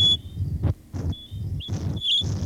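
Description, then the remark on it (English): A thin, high whistling tone generated by Tudor holds and wavers, bending upward in places, while low, scratchy rumbling swells in about five rough bursts underneath. “Tudor so happens to generate a high whistling sound and a low, scratchy, rumbling sound just as Cage begins the tale.”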